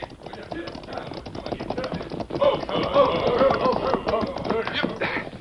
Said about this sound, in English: he was roused by the sound of approaching hoofs